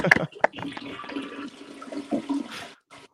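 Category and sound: household object, toilet flushing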